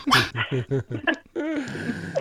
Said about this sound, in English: I'll give you half a correct bark for that.